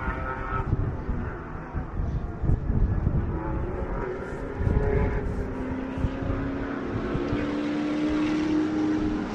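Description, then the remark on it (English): A Cougar race car's engine roars loudly and continuously at the races, its pitch climbing into a whine as it sweeps past, with a heavy rumble underneath and no voices. “We'll wait till the cougar goes by.”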